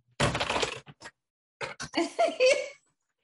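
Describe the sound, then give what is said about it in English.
Clattering of computer keyboard typing: a dense flurry of rapid keystrokes, two isolated clicks, then another burst of clacking that blends with a brief vocal sound. “And the keyboard acting in this scene. Hold on. Let me get my keyboard up.”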